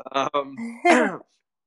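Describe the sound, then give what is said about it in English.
A loud, throaty cough bursts out after a brief croaking vocal sound, then stops abruptly into silence. “I didn't mean to cough like that. That was louder than I thought it was going to be.”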